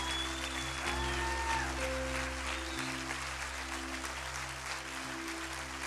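An audience applauds a man as he comes up, a dense wash of many hands clapping at an even loudness throughout, with a low sustained musical tone humming underneath and no voices.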